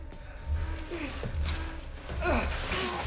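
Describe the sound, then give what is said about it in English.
Heavy, labored breathing rises and falls in ragged bursts, with strained vocal grunts mixed in over a low rumbling background, during a fight scene in a film. “The breathing, too.”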